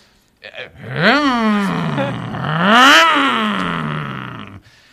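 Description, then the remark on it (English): A sports car engine revs hard twice, its pitch climbing and falling with each throttle blip, loud, then settling into a steady roar before cutting off. “Now I can drive this car and I can rev it to my own.”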